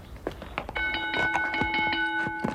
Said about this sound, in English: Ring the bell, Charlbury.